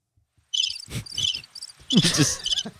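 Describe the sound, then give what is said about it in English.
A cricket chirps in rapid repeated trills, the high pulsing notes carrying steadily, with a few soft thumps and shuffles underneath. “Just listen to the cricket.”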